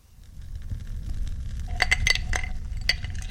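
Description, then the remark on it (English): Small hard resin dice clink and rattle against a glass, a quick cluster of bright taps over a low rumbling background, fairly clear, with no one talking. “You've caught me here sitting by the fire and enjoying a glass of fine resin dice.”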